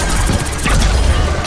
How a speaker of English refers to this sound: I just love the constant gunfire and weird noises with, like, people just chattering away in the background.